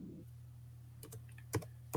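A few sharp keyboard taps, irregularly spaced, click over a steady low electrical hum. No one is talking.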